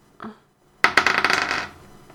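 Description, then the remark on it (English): Dice rolled on a table for a damage roll in a tabletop role-playing game: a soft tap, a brief pause, then a bright burst of rapid clattering rattles that tumble for about a second and trail off. No voices. “Let me roll my damage.”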